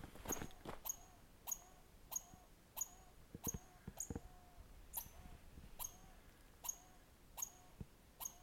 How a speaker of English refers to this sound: Yeah, so that's an agitated red squirrel. We have a lot of red squirrels here, and we have another a whole bunch of different introduced species, and the red squirrel's one of them, and they're ubiquitous. They're found throughout our forests,